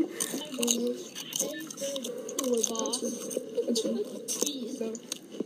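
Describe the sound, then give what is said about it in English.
Loud, wet chewing right into the microphone, a rapid run of crunchy, squishy mouth clicks, with a voice talking over it. “Stop chewing! I can hear it from a mile!”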